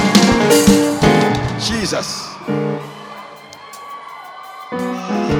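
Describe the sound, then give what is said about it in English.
A crowd screams and cheers in celebration during religious worship, loud, with overlapping shouts and whoops that swell in bursts, ease briefly in the middle, then surge again at the end. “In that holy cloud, come on, scream.”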